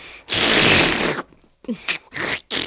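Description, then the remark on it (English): A voice imitates a vacuum cleaner sucking dust: a loud, harsh, breathy whoosh lasting about a second, followed by three shorter sputtering, hissy bursts with brief gaps between them. “could you give us a vacuum cleaner dust sucking sound?”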